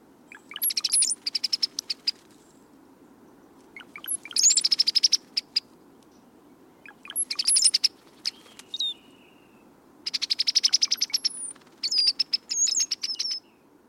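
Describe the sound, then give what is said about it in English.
Bursts of liquid, gurgling bird song repeat every few seconds, bubbling notes tumbling like water poured from a bottle, clear over a soft low background hum. “Apparently, with much labor and effort, they gurgle and blubber up out of him, falling on the ear with a peculiar, subtle ring, as of turning water from a glass bottle, and not without a certain pleasing cadence.”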